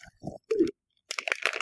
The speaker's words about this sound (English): I'm going to start slicing this cheddar cheese up and mixing it with my other magical ingredients.